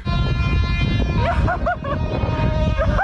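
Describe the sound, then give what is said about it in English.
A Class 59 diesel locomotive horn blares loud in one long sustained chord over a heavy engine rumble, while excited voices whoop and shout briefly above it. “Any minute now, we're going to see a Class 59 come through with some absolutely brilliant honks.”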